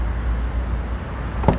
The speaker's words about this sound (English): Popping the trunk.